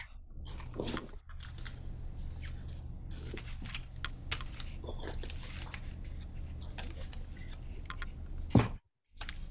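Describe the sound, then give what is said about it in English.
A large pencil being ground in a plastic AFMAT sharpener that holds it by itself, a steady, scratchy rasp with crunchy clicks that runs for several seconds, pauses briefly near the end, then resumes. No one speaks. “Is that a special pencil sharpener that does such a big?”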